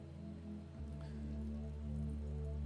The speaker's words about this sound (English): Okay, forget it. Now keep pouring.